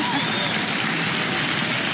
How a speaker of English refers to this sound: Loud. Loud claps tonight.